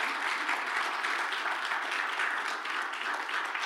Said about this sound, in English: Let's give Nicole a round of applause.